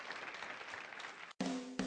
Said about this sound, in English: Yeah, give the Lord a big hand clap.